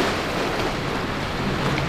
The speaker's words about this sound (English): You hear that? It's the Pacific Ocean, but we're not talking Malibu or Santa Monica. Those are sounds from Katsuura in Japan.